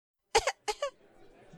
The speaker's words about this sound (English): I'm coughing.